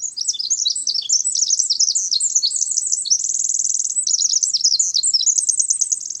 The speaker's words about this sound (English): Listen carefully to the song of the Pacific Wren.